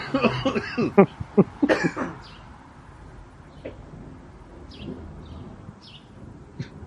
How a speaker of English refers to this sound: Birds are chirping.